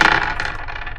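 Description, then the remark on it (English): Three dice, two positive and one negative, clatter and rattle across a hard tabletop for about a second, a busy burst of small clicks that thins out as they settle. “Will you roll for me, please?”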